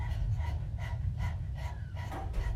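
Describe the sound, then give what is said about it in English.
Several people pant rapidly with tongues out, imitating a dog as a breathing exercise: about six quick, even breathy bursts over a steady low rumble, with no speech. “Stick out your tongue and pant like a dog.”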